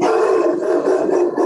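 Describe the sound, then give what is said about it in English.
A dog barks loudly in a rapid, almost continuous stream of vocalizing that fills the brief moment, with no one speaking. “Are you barking at someone?”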